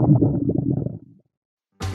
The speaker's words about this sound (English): There's nothing more embarrassing than your stomach growling at an inopportune moment. Maybe you're supposed to present a project at work, but everyone's distracted by the racket coming from your gut.